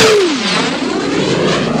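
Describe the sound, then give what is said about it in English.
A single-engine plane flies low right over a car's windshield on a two-lane highway through cornfields in Illinois, landing on an airstrip. Its engine roars past, the drone dropping sharply in pitch as it passes, then fading into a steady rushing wash of noise. “We were driving along a little 2-lane highway cornfield stretch near Moments, Illinois, when suddenly a single-engine plane shot right over our windshield.”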